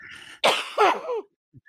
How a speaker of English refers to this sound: I can't stop coughing.